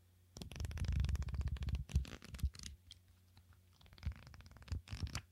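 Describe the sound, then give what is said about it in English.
Crisp rustling and flapping of the pages of an 80-page Field Notes notebook with a heavy-duty chipboard cover, made in the USA, being handled: a dense burst of riffling followed by scattered softer page turns and crinkles, no voices. “Like, just listen to how the paper sounds.”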